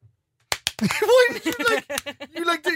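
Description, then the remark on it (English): Two quick, sharp hand claps in close succession, followed right away by people talking over the rest of the moment. “you did like a prepare clap.”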